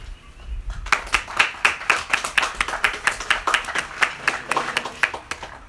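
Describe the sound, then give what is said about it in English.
A round of applause from the men in the audience, standing to honor all the women present, breaks out after a second of quiet; dense, steady clapping that holds at an even, fairly loud level for about five seconds, with no voices over it. “And so what I'm going to ask real quick is for the men to stand up and give a round of applause to all the women here today.”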